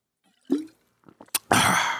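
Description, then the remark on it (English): Someone outdoors on a hot day takes a sip of a drink: a wet plop, a few small swallowing clicks, then a loud, breathy exhale that carries to the end. “I need another drink of water.”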